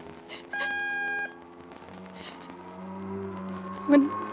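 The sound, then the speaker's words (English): A single steady, high-pitched time-signal beep marking 12 o'clock rings out for just under a second, loud and clear over a low background hum, followed by faint murmuring sounds. “When you hear the signal, the time will be 12 o'clock.”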